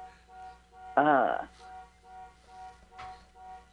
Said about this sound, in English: Speaking of car wash, there is a car honking outside the studio.